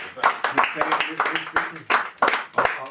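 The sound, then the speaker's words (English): Several people clap in a quick, uneven burst of sharp, crisp hits lasting a few seconds, with voices mixed in underneath. “Like, let's clap it up for the growth, man.”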